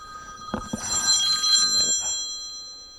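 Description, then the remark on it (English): A telephone bell rings in a quick electronic trill with bright sustained tones, moderately loud, with a few soft knocks underneath and no voices. “I expect a busy man's phone to ring.”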